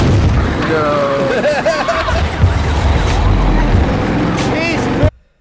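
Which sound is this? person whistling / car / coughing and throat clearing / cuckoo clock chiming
car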